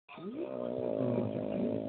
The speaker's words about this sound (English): Yeah, somebody snoring. Snoozing something. Oh, crap. Snooze control. That's some good sleep.